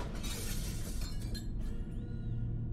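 sound effect, glass breaking

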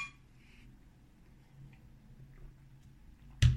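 household object, beer glasses clinking

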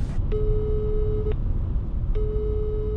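signal or alarm, phone call ringing tone

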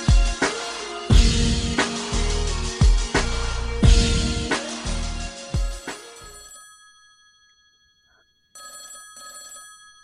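signal or alarm, telephone ringing

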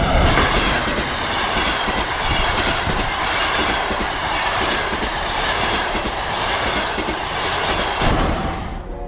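vehicle, train running on rails

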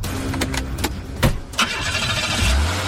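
vehicle, car engine starting

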